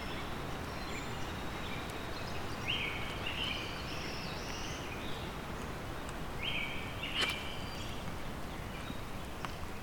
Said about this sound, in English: There's the brown creeper song.